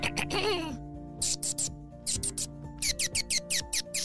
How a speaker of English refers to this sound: And just then, Bat-U started chirping in a way that, I don't know what was going on, but every single bat could hear him.